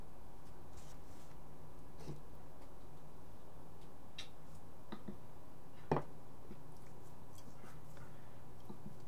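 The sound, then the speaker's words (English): Sparse, irregular computer mouse clicks from someone clicking around on a computer trying to get better bandwidth, a handful of short sharp taps with one slightly louder than the rest, over a steady low hum and no talking. “No, I'm clicking around trying to get better bandwidth.”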